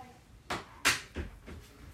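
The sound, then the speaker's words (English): A door swings shut with a firm thud, followed by a few softer knocks and rattles as it settles. The sounds are heard alone, with no talking. “Can I shut the door first?”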